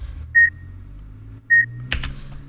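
Two short, clean electronic beeps at a steady mid-high pitch, spaced about a second apart like a medical monitor, used as a hospital sound effect in a cave sequence, over a low hum, followed by a couple of brief clicky rustles.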